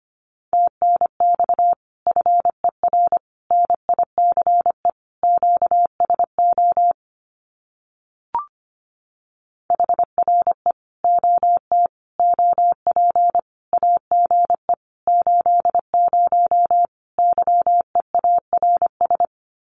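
Morse code sent at about 25 words per minute, spelling out common amateur radio QSO phrases: a steady mid-pitched tone keyed in rapid dots and dashes, broken by a silent gap with a single click midway before the sending resumes.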